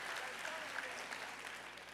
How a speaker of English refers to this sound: Let me hear the hand claps of everybody who ain't falling this year.